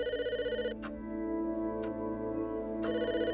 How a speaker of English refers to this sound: The goods are all packaged up and ready to go. When the phone rings, it means the plane has arrived.